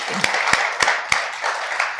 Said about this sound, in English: So let's give a round of applause to everybody this morning.